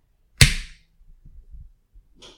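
A beer can cracks open with a sharp, loud snap followed by a short hissing fizz, then a few soft low clunks and a brief faint second hiss at the end. No one speaks.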